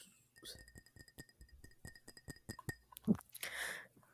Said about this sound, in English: Did you hear that? For the audience at home, that was Andrew tapping on his rosé glass.